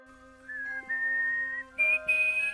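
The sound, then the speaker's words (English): A soft, clear whistle of four tones, two lower notes followed by two higher ones, each held briefly with small gaps between them, over a faint low hum. “The clown nodded her out of the room, then whistled softly 4 familiar tones.”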